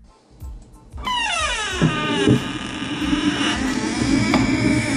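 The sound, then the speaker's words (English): A long, loud creak of a door in need of oil: a squealing, harmonic groan that starts abruptly, slides downward in pitch, then drags on with wavering tones for several seconds. “I really gotta oil that door.”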